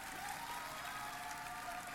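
Steady hand clapping fills the whole two seconds, a dense, even patter of many quick claps blending into a soft, continuous wash, heard fairly quietly with no talking.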